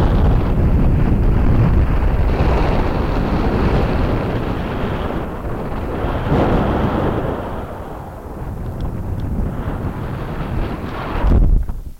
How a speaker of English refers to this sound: So this should be it, top of the coast to coast. It's a bit windy, so it'll probably get noisy going along.